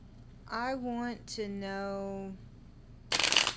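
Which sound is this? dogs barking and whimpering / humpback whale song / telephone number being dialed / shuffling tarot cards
shuffling tarot cards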